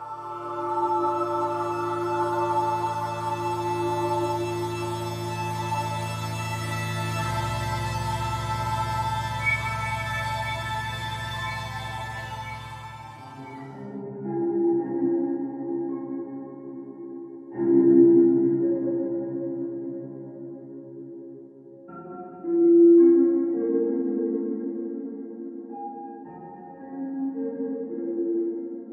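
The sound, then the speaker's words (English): Dissonant ambient music from the Minecraft soundtrack: a dense, reverb-soaked wash of layered tones gives way to lower sustained drones, with two short swelling bursts with hints of melody rising out of it before fading back. “They're short bursts of relatively dissonant, irregular noise drenched in reverb with hints of melody just sprinkled in.”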